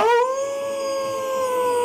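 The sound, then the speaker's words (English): A person lets out a long, loud wolf-like howl at the moon, rising at first and then held steady on one sustained note, with no talking. “We don't know, but we'll mock it by howling at the moon.”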